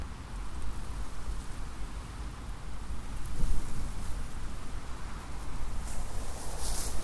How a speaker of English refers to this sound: It's pretty windy now, but it's brightened up a little bit.